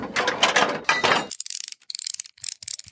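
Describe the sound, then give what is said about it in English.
A ratchet wrench cranks in a dense burst of fast rasping clicks, then continues in quick, sharp ticking strokes with short pauses between them. No one talks. “Wait, do you not know what a wrench is?”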